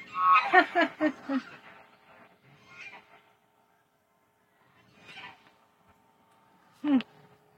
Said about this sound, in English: Those are my Chinese geese. They speak the Chinese.